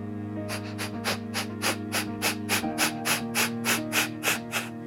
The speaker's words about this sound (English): And as you, I don't know if you could tell, but I was breathing out so fast I didn't even have to pay attention to breathing in. The natural response was just my body breathed in.